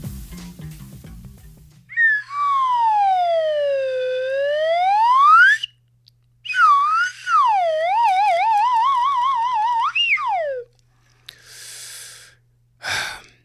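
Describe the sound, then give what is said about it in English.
A slide whistle plays two long, loud glides: the first swoops down and back up, the second wobbles up and down before dropping off, followed by short breathy puffs. “Slide whistles. They're pretty funny. Weird little dorky funny sound.”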